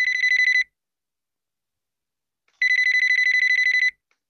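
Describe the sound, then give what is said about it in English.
An outgoing call ringing on the line: two bursts of a trilling electronic ring tone, a short one then a longer one after a pause of about two seconds, clear and alone with no talking. “He's ringing.”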